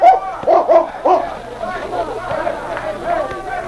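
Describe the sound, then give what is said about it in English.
A dog, after sniffing the ground by the back door of a cafe, gives three or four quick, loud barks in a burst at the start to signal it has found a scent, then falls quiet while a murmur of background voices and activity continues. “he stopped and barked to indicate he had found the scent.”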